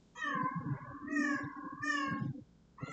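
animal, cat meowing

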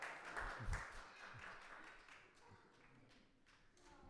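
crowd, audience clapping

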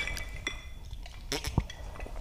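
household object, glasses clinking

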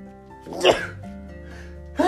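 human body sound, a sneeze

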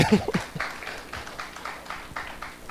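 crowd, audience applause

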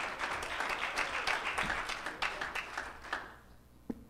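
crowd, audience hand clapping

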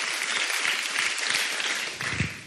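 crowd, audience applause

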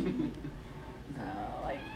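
animal, cat meowing

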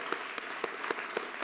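crowd, audience hand clapping

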